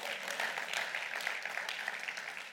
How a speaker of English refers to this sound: As I walk through, you can give a little clap, that's all right.